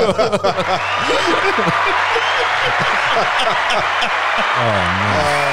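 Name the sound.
applause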